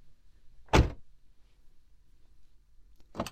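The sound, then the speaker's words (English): A car door opens and then shuts as someone gets out of the car, two solid thumps about two and a half seconds apart over a faint low rumble, with no one speaking. “I'll come out.”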